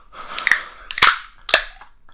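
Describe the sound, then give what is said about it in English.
A beer can cracked open, heard as three sharp, bright snaps about half a second apart, each followed by a short hiss of escaping fizz. No one speaks. “Okay, we gotta crack this so I can get some.”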